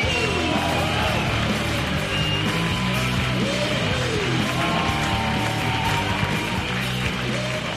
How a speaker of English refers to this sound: Please put your hands together and welcome to the stage your compere, Brennan Reed.